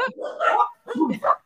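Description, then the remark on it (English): Dogs, set off by a lively welcome introduction, bark in two quick, fairly loud bursts, their yappy calls overlapping with a slight whiny edge before falling quiet. “Even the dogs have kicked off.”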